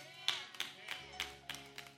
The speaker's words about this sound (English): I got three claps, four maybe.